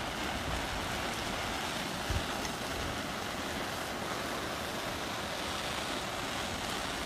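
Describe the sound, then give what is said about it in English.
Steady rain hisses without a break, a dense, even wash of noise with one brief soft knock partway through. No voices. “I don't know if you can still hear the rain or my banger getting hot, but we are about to go in.”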